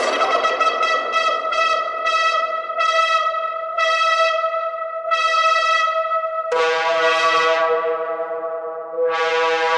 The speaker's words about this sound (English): There's an echo for you, buddy.